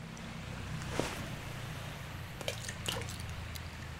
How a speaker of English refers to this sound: And the belief is that if I throw coins into the body of water below, that the ghost boy will throw the coins back at me.